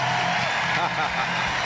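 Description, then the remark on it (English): A stadium crowd at Target Field gives a standing ovation for 44-year-old pitcher Bartolo Colon as the Twins go to their bullpen, a steady wash of clapping and cheering that holds loud and even, with a few voices rising above the roar. “you are going to hear a huge ovation for Bartolo Colon.”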